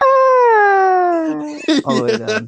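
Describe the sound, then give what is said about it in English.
A voice imitates the cartoonish falling cry of a character from an old video game falling off a cliff: one long, steady wail that slowly slides downward in pitch for over a second, then breaks into a few short, choppy vocal bursts. “It's like somebody from the old video game falls off a cliff and just like.”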